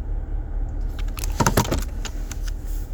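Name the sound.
cars idling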